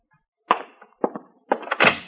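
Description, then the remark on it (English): Several knocks on the wooden door of a room, fairly loud: a single rap, then a quick pair, then a brisk cluster of three, with short silences between and no voices. “I left my number and was on the point of going out to dinner when there was a knock at the door of my room.”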